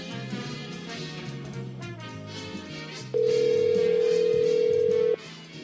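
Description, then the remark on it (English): A single loud, steady ringback tone of about two seconds sounds on an outgoing phone call to a home phone, played over busy background music. “Where are you at? Calling him.”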